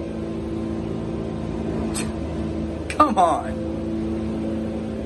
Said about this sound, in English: I don't know if you can hear that sound. It literally sounds like a garbage truck, but it's been going for like 5 minutes.